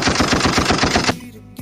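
A rapid, loud burst of automatic gunfire, about ten shots fired in quick even succession for roughly a second, then a short fading tail. No talking.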